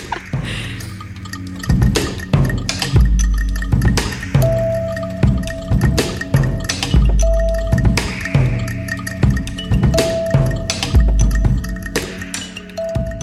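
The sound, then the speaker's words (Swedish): An ambient electronic music track: steady held tones under a busy, irregular rhythm of clicky, drip-like percussive hits and deep bass thuds, played fairly loud with no voices. “Så och först liksom, väldigt harmoniskt, sen kommer väldigt stökiga rytmer igen.”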